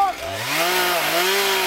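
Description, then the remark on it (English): A chainsaw used by firefighters to cut a fire line around a fire revs up, its whine climbing in pitch and then holding a loud, steady buzz through the short stretch. “Firefighters use bulldozers, shovels, chainsaws, whatever they can haul up the hill to cut that line.”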